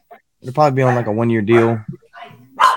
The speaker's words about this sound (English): Sorry, I got the dogs going crazy.